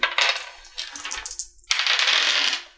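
A six-sided die clatters and rolls across a table in two bursts of bright, rattling clicks, the second louder and more sustained before settling, with no voices.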